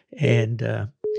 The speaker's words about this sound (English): Did I lose somebody? I hear something. Somebody's phone beeping. Might be mine. I don't know. Let me see here. What? Yeah, I think that was my phone.